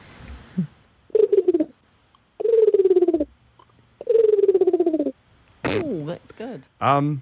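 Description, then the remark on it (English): Three drawn-out, throaty pigeon coos, evenly spaced and fairly loud, made by a person imitating the bird, followed by a brief burst of other vocal sounds. “It's a pigeon, isn't it? Correct.”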